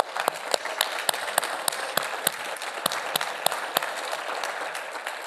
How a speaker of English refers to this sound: So this is kind of the end of the conference, and thank y'all for coming. So let's stand it up and clap it up for all of us for being here.